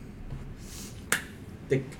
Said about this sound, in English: The clap might just mean we're... It's like a filler text where I don't have anything to say, so I'm going to just... So you're awkward? Yeah, clap, and then I'll just start talking about something different, alright?